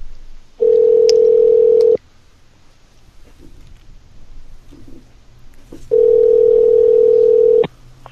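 A telephone dial tone sounds twice as a call is placed, each a loud, steady electronic hum lasting over a second, separated by several seconds of faint background noise with no talking.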